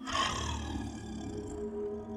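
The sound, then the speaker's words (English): A deep, menacing, malicious demon-like growl coming from a window, loud and sustained for about two seconds, with a rough, rumbling low tone and harsh upper grit that tapers slightly. No one speaks. “And then when I woke up, I heard a growl. Coming from my window, like a demon growl, like very malicious, like in the sight, and it was loud.”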